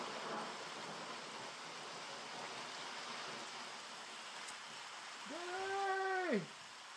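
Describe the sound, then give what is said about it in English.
Steady rain falls throughout, a dense, even hiss with no voices. Near the end a brief, wavering meow-like cry rises and fades over the downpour. “It's the first time in 45 years it's been raining.”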